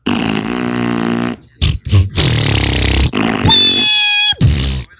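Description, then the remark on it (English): A rapid string of loud, buzzy fart noises, several bursts back to back with brief gaps, one rising into a squeaky whistling tone near the end. No one speaks. “At the halfway mark, now we do 4 seconds of uninterrupted fart noises.”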